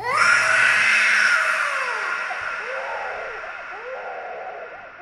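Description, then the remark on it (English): A person screams loudly and continuously, the raw, strained cry wavering up and down in pitch and fading slightly over several seconds, with no talking. “the only sound in the world was … screaming”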